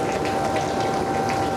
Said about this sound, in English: It's like a bright orange, molten river of fire, like a little waterfall. It's white hot. It's a kind of orange that I don't think I've ever seen before.